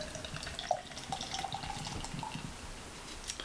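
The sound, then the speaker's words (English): A steady pour of beer from a can into a glass, a continuous fizzy splashing gurgle lasting a few seconds with no voices. “Nice pour, nice execution.”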